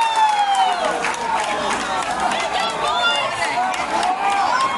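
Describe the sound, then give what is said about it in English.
A large baseball crowd roars and cheers continuously as Pella Christian takes the lead on three consecutive hits in the fifth inning, a loud, dense wash of shouting voices with rising and falling whoops layered over steady clapping for the whole stretch. “have plated two on three consecutive hits and have a runner at second base and have taken the lead, and the crowd goes absolutely nuts.”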